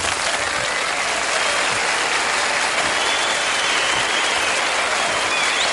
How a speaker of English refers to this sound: Now put your hands together for the Shiznit Show.